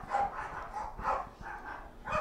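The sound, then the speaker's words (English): Several small dogs bark and yap in rapid, overlapping bursts, a busy high-pitched flurry that keeps going for a couple of seconds at moderate loudness. “Dogfight.”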